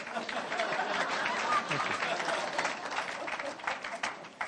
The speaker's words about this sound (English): Yeah, do that. Love a good clap.